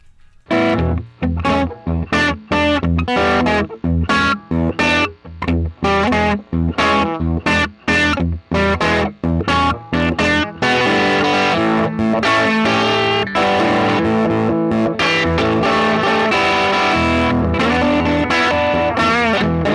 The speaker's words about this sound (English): I'm gonna play a little bit of guitar.